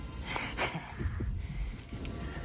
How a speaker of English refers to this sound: I can hear your heartbeat.